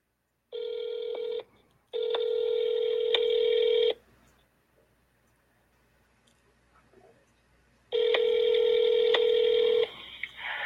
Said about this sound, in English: let me do a dial up and see if we can get Mark online